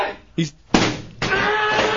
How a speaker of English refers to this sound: He's throwing chairs.